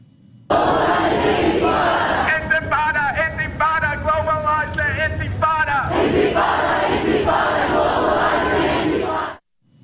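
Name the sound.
protest march crowd chanting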